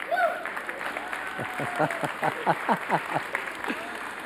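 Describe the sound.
One man claps about ten times in a steady, moderately quick rhythm, sharp distinct slaps, starting the clapping, while a murmur of voices and chatter continues underneath.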